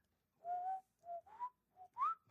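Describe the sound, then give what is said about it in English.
A person whistles a short, lilting tune of four quick phrases as a password to log in, the pitch sliding up and down, with the last note rising highest. The whistling is clear, with no talking. “I was just like whistling the password.”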